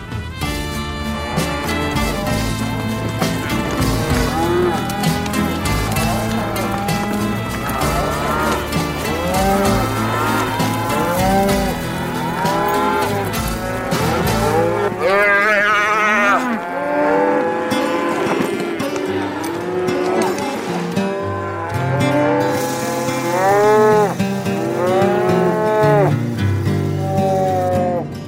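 A working pen full of cattle mooing and bellowing, many overlapping calls rising and falling in a steady, loud chorus, with no one talking.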